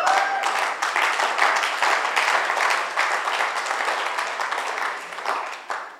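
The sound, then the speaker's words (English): An audience applauds for the Lord during a sermon, many hands clapping steadily for several seconds in a dense, continuous patter that stays fairly loud throughout, with a faint murmur of voices mixed in. “I guess you were trying to clap for the Lord.”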